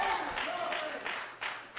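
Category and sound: crowd, audience clapping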